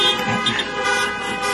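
A horn blows one long, sustained blast, loud and steady with a brassy, buzzing tone that holds for the whole moment without a break.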